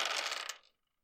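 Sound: dice being rolled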